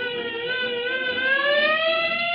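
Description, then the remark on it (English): A fire engine siren wails steadily on its own, its bright, harmonic-rich tone climbing slowly in pitch at a constant, fairly loud level throughout. “So, alaka-zippity-clang, I turned myself into a fire engine.”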